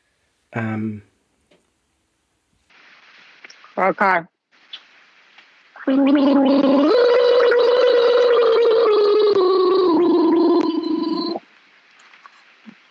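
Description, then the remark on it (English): A person gargles water in a long, steady bubbling rattle lasting several seconds, preceded by a couple of short vocal sounds and brief throaty bursts. “Can I call you back? Just while I get the water in?”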